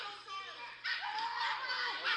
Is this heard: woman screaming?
yes